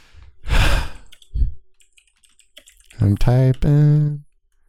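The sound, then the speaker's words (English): A breathy exhale gives way to a quiet run of rapid, faint keyboard clicks as someone types the word "butt", before a voice breaks in with drawn-out vocal sounds. “I'm typing butt because I don't want to say bad words that will make Jesus cry.”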